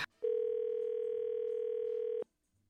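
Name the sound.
telephone dial tone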